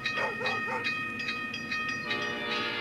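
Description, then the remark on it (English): A train rolls past with a steady rail rumble while its horn sounds in sustained, blaring tones, fairly loud throughout, with no voices present. “Well, I wanted to hear the train.”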